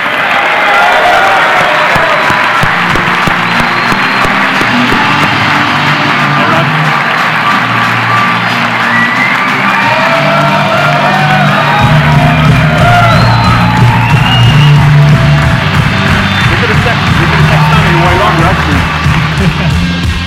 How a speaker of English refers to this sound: Ladies and gentlemen, would you please join me in giving a warm round of applause for our special guest this evening, Mr. Ronan O'Gara.